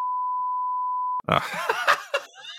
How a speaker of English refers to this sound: We beep that as well. Beep out the name and the nickname. Because you can also beep out.